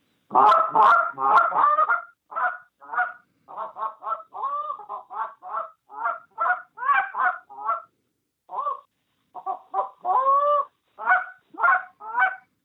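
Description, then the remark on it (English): A goose call blown in a rapid series of loud honks and clucks, with short bursts and brief pauses in an irregular rhythm, mimicking a flock of geese to draw geese in the field close enough to shoot, with no one talking. “I mean, if I see some geese out in the field and this is the real deal and I want to get these things close to shoot, it's...”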